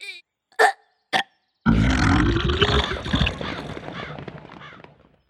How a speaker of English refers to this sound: Oh no, I don't feel so well. I think I'm going to burp. Good one, Princess. But stand back, because I'm going to blow.